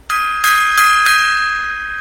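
A gong is struck four times in quick succession, each hit adding to a bright, shimmering metallic ring that sustains loudly and fades only slightly by the end. No voices.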